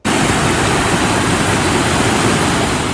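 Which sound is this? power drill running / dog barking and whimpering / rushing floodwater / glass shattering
rushing floodwater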